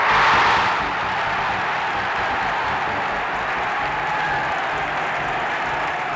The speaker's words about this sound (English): As it drops into the net, an extremely loud horn sounds, almost shaking the stadium. And then the crowd explodes in cheering.